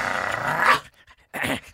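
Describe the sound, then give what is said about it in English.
A dog barks twice, a long rough, growly bark followed by a brief pause and a second shorter bark. No one speaks. “Thanks a lot for calling Two Dog FM, your bark in the outback.”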